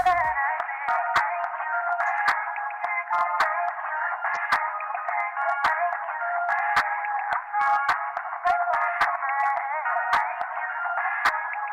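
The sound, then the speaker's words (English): A pop song played down a telephone line by phoning up a number to listen to it, thin and tinny with no bass or sparkle, running steadily at a moderate level with faint clicks scattered throughout and no one talking. “But imagine if it was released 8 years ago and you didn't want to buy it, you didn't want to download it, you just had to phone up a number to listen to it on your phone. This is what it would sound like.”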